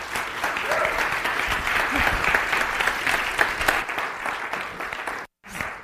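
A crowd claps steadily in a dense, continuous round of applause lasting several seconds as a woman comes up to lead them in the morning, then the clapping stops abruptly into a brief silence before a faint tail of sound.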